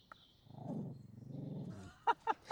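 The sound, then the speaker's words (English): A dog named Lovage drinks from its water bowl: a low, rumbling sound gives way to three quick, sharp wet laps in an even rhythm near the end. “Lovage the dog, don't touch your water.”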